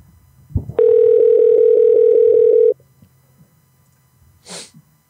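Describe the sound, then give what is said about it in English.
A loud, steady telephone dial tone, heard when a number is to be called, hums at one low-mid pitch for about two seconds after a soft thump, then cuts off; a short sharp sneeze-like burst follows. “Call this number for me, please.”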